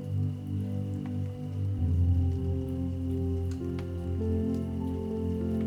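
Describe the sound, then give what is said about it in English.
Gentle raindrops patter softly and irregularly, scattered drips tapping a surface over a steady, low droning hum that fills the background throughout, with no voices. “Tonight, let the rhythmic sounds of gentle raindrops lull you into deep, peaceful sleep.”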